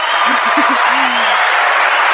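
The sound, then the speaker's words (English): A dense, steady wash of crowd applause lasting about two seconds, with a few short low whoops and one sliding cheer near the start riding over the clapping. “Now we can go applause.”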